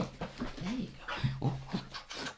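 A dog named Major pants rapidly, with several short whimpering whines rising and falling over the breathy huffs, alongside faint human murmuring in the background.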